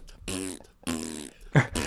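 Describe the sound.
A man imitates fart sounds with his mouth while walking on stage in a Panto, making one with every step: three buzzy, raspberry-like bursts in quick succession, each about half a second long, fairly loud, with short pauses between them.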